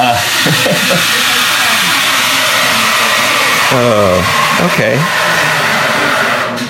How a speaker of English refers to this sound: as there's a plane landing above us.